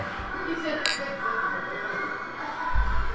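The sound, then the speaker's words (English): Beer glasses clink together once in a toast, a short bright ring standing out over a steady background of crowd chatter and bar noise. “Well, cheers.”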